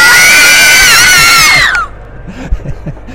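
Ballyhays children give a big cheer, screaming loudly together in high-pitched, overlapping voices for about a second and a half, then the cheering cuts off abruptly, leaving faint murmurs and a soft thump.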